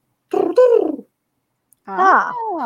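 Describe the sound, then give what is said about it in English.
A voice imitates a dodo's pigeon-like call: two loud, throaty, warbling coos separated by a short pause, the second longer with a rising then falling pitch. “And the reason, I did not know this, but apparently the reason why they were also called the dodo was because their call sounded very similar to a pigeon, but it would have been more like.”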